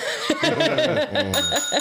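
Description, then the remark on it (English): A bell rings with a bright, sustained high tone over bursts of chuckling laughter, all fairly loud for under two seconds. “Hashtag sell the bell.”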